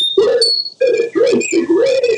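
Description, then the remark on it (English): Sine wave speech version of the spoken sentence "A steady drip is worse than a drenching rain": a few pure whistling tones glide and jump in pitch together, tracing the rhythm of the sentence in three bursts, eerie and electronic rather than voice-like. “And now I'll play you the sine wave speech again.”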